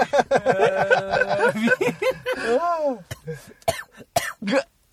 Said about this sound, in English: Oh, yeah, look who's coughing now. Water? It's getting pretty smoky in here. My eyes are... Yeah, it's the vape, man. That vape's getting inside you, bro.